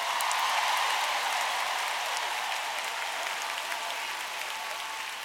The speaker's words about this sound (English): All the needy people, clap your hands.